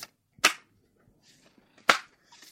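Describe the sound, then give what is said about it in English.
Playing cards being shuffled: two sharp, loud snaps of the deck, each followed by softer, brief papery riffling rustles. No one speaks. “I'm still shuffling my cards.”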